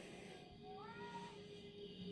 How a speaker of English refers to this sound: And that would be my slightly deaf grandpa kitty trying to figure out by echolocation if there's anybody up here that he can play with. It's okay, Bubba's.